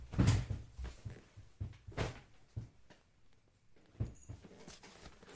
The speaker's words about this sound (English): Hold on. I gotta freaking move my pillow on my footrest.